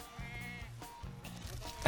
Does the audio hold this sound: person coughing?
no